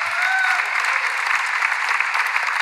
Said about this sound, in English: But FLET is still going to lead worship once a month. We should clap for that.